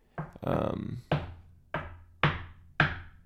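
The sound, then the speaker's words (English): Loud, slow knocking on a door: about five heavy raps spaced unevenly, each ringing briefly before the next, with a short burst of other sound near the start. “Who the fuck knocks like that?”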